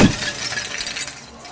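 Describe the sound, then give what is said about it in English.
A skeleton's skull shatters into pieces as a staff is brought down on it: a single sharp crash, followed by a bright, scattering clatter of fragments that fades out over about a second and a half, with no voices. “So you missed the first time, and frustration wells up within you, and you bring this staff down, just shattering the head of the skeleton as it just falls into pieces.”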